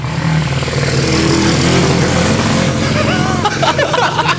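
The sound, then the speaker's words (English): A motorbike ridden by a kid behind a house roars, loud and continuous, its throaty drone swelling with revs before pitching upward in a few quick sweeps near the end. “It's just some that's random kid on a motorbike in the back of Jack's house.”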